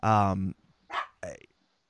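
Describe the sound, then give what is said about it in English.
A puppy barks three times, the first a long, loud, tonal bark followed by two shorter, sharper yaps after brief pauses. “Pup is kind of being a little rascal there.”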